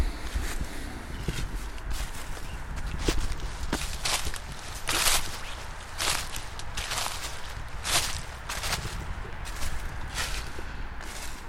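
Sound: footsteps walking outdoors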